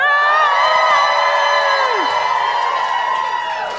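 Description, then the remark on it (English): A loud live crowd at a show at Laugh Boston screams and cheers together on cue, a sustained roar of many high voices that holds for several seconds before tapering slightly at the end. “Or it's a video. Scream.”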